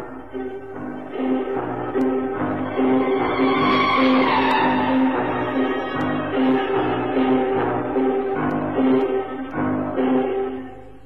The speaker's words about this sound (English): I took a bus to the old Brompton Road, and then I wished I hadn't. The chattering of the passengers, the grind of the gears.